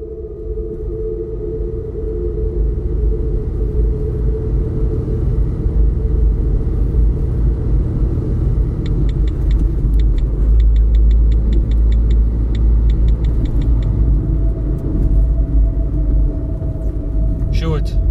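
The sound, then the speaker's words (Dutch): A car drives along steadily toward the house of former Heineken director Philip de Ridder, its engine giving off a constant low rumble that fills the interior, with faint rhythmic ticking, like an indicator, partway through. “In een laatste wanhoopspoging stapt Sjoerd in de auto... naar oud-Heineken-directeur Philip de Ridder...”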